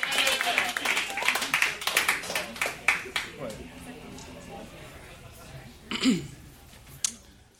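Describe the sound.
An audience claps together, loud and dense for the first few seconds, then thins out to scattered claps. A brief voice and some murmur come in near the end.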